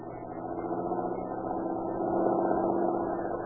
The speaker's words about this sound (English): Hey, here comes a car. Looks like the boys Katzenberger's looking for. Think I'll stop them.